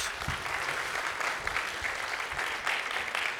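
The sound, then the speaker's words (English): A crowd at Unionville Alliance claps steadily for a few seconds after a man shares his story. The applause is a dense, even patter of many hands at a fairly constant loudness, with no voices rising above it. “Yes, can we get a round of applause, please?”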